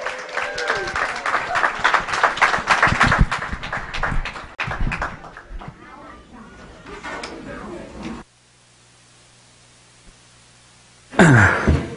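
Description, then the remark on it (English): A crowd claps for the kids in a dense, loud burst of applause that gradually thins and fades, followed by near silence and then a sudden brief burst of noise at the end. “One more round of applause for the kids.”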